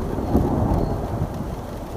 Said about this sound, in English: This scene plays out dozens of times this summer. The rain picks up. Suddenly, there's a flash, and then comes the thunder.